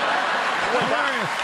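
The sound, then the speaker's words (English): A crowd cheers and claps loudly for a brief stretch at a woman flipping off President Trump, a dense, steady wash of applause with a few voices rising and falling above it. “Of course, the crowd cheers Trump being flipped off because that's what everybody in America feels, which is obviously not true.”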